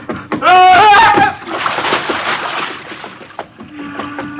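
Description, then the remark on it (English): A loud cry rings out, then a big splash as a person jumps into the sea, followed by a few seconds of churning, sloshing water that fades. “Oh, madman, to jump in the ocean.”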